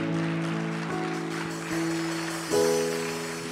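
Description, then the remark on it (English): An audience claps steadily, giving the Lord a hand clap of thanksgiving, a dense wash of many hands over sustained organ-like chords that shift pitch a few times. No one speaks. “If you believe that, give the Lord a hand clap of thanksgiving today.”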